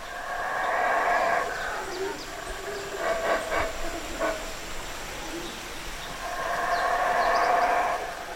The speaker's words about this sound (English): As I drive into the reserve, I hear the sound of howler monkeys, Belize's largest primate. It feels like a perfect welcome to this special place. These vocalizations are designed to carry right through the jungle, and they do a really good job of it